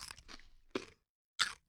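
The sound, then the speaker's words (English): Crisp crunching from someone biting into a pickle held to the microphone: a cluster of snaps, then two sharper crunches separated by brief silence. No talking. “First, we're going to do a bite into the mic and get the crunch factor.”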